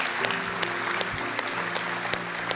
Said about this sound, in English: And I want to take a moment and just ask you as our church family, I want to honor our first responders that are represented today. And so will you just join me in giving them a warm round of applause saying thank you,